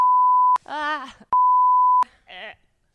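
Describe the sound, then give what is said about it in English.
Two loud, steady censor bleeps, each about half a second long, are each followed by a short burst of voiced speech, with a quiet tail at the end. “You gotta beep. I will it. Beep that out. Bleep it. I'll beep that out.”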